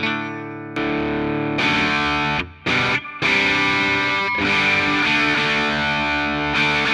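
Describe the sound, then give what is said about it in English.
A lightly overdriven electric guitar on the neck pickup, played through an amp's red channel at low gain with the filter at about 3 or 4 o'clock, plays sustained, ringing chords with a gritty, bright edge, briefly cutting out twice midway before resuming loud and full, with no one speaking. “Let's turn the red on now, low gain.”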